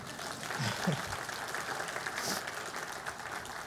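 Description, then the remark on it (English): A crowd applauds steadily for a few seconds for the speaker's son ahead of his baptism, a dense wash of many hands clapping at even loudness, with a couple of brief low voice sounds early on. “You guys can make him feel good. Clap for him.”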